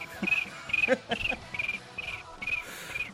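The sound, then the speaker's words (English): A person imitates a cricket, producing a steady series of about seven shrill, evenly spaced chirps with faint breathy mouth sounds between them. “I was making my cricket noise.”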